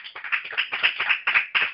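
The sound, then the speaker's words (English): An audience claps together in the morning to show they love the Lord, a dense patter of overlapping hand claps with a few stronger bursts, held at a steady moderate level with no voices over it. “If you say you love the Lord just by a hand of applause, how many say you love the Lord this morning?”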